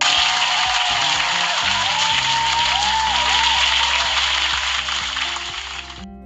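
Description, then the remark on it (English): A sustained round of applause, dense and bright with rapid overlapping claps for about six seconds before cutting off abruptly, with some whistles or cheers rising through it. “Round of applause because it's fucking Wednesday, please.”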